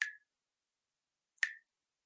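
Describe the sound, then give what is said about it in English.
Two crisp water drips from a tap, about one and a half seconds apart, each a bright plopping ping with a quick fade, isolated against silence. “That's a very annoying sound of a tap dripping.”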